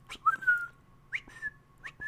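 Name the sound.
whistled bird call imitation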